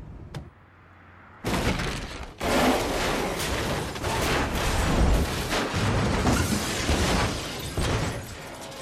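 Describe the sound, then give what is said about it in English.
A sudden violent car crash erupts after a faint low hum, as a car hits a concrete wall and flips over: a hard impact followed by a second jolt and a long roar of crunching metal, scraping and shattering debris that keeps tumbling loudly. “He's intentionally crashed and flipped the car with the hope, I guess, of killing Vincent.”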